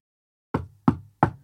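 Three firm knocks on a door, evenly spaced about a third of a second apart, close and fairly loud with a short hollow resonance after each rap.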